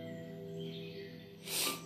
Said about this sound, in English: Excuse me for sniffing, you know.